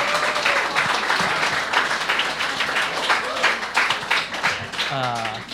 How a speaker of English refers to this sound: Ladies and gentlemen, thank you so much for coming out tonight to the Katie Halper Show. Give a round of applause for yourselves for making this happen.